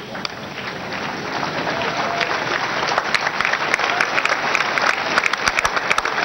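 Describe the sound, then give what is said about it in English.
A church audience claps steadily and densely after a healing prayer, the applause building slightly louder over a few seconds, with sharp individual claps standing out near the end. “Why can't you people clap before the prayer?”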